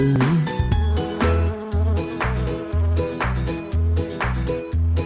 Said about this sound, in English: Where did this wasp come from?